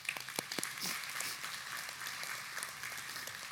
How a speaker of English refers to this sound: Yeah, we can clap.